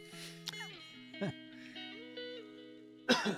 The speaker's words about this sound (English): I don't ever get a cough until I start recording. What's up with that?